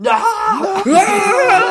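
Actor Toby screams in anguish in a movie scene, a loud, drawn-out vocal cry whose pitch wavers and bends, rising and falling over almost two seconds with no speech around it.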